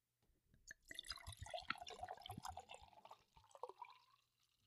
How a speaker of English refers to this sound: Because, I mean, you know, classy pours is definitely splitting the entire bottle in half